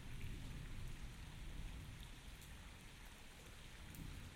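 Steady, dense rain pours down with no pauses, a soft continuous hiss over a low rumbling undertone. No voices are present.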